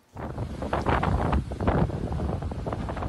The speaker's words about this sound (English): Waves crashing over the seawall in Devon.